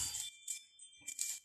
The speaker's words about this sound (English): I'm recording on my phone, so y'all excuse my alarm.